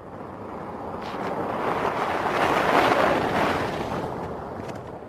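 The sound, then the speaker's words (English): An SUV driving across Hakskienpan, a desert pan in South Africa's Northern Cape province, testing the ground for the Bloodhound supersonic car. A steady broad roar mixed with wind-like hiss swells to a peak around the middle and then eases off. No one speaks. “That's an SUV car testing the ground for the Bloodhound supersonic car that's expected to do its high-speed testing between October and November this year.”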